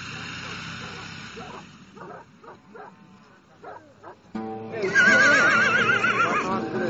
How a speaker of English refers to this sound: The horse market at Kochkur. Horse traders and dealers from the whole area meet here every week.